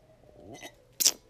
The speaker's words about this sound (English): Sipping my wine.